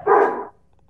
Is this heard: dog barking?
yes